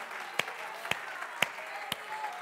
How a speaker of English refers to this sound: In the name of Jesus Christ, in the name of Jesus Christ, come on, clap your hands unto the Lord and magnify him. He's worthy, he's worthy.